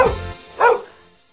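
A dog barks twice, about half a second apart. The barks are short and sharp, and no one is talking.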